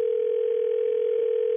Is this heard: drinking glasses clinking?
no